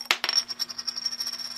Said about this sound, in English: It is heads. I didn't catch it because I'm bad at catching coins, at least plastic ones. It is heads.